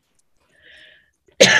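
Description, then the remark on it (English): A sudden, harsh coughing fit bursts out loud near the end, following a stretch of near silence with only a faint, thin tone beforehand. “Sorry, going while I have a coughing fit.”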